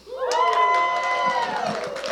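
A church audience roars together in loud, sustained shouting and cheering at the top of their lungs, voices rising into high pitched screams that hold steady for about two seconds before easing slightly.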